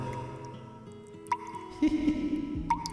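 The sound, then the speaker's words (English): Water drips from a leaking pipe, two distinct plinking drops falling about a second and a half apart, each a short bright blip over a low steady background hum and some faint clatter. “Well, it looks like Mark didn't come in to fix this pipe I told him about.”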